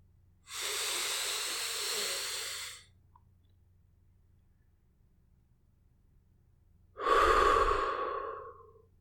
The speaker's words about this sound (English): Let's do a breath now. Just another big slow breath in through the nose and out through the mouth. Ready?